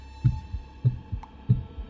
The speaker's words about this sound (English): All I could hear was my heartbeat, rhythmically counting down the few seconds I had left.